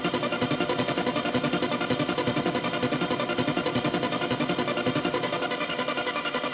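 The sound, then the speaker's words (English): A clean, undistorted digital synthesized waveform plays steadily and loudly, bright and buzzy with a regular pulsing rhythm about twice per second, with no voices. “And I'm going to play that to you and I'll switch it in and out so you can hear the effect and the difference in the sound.”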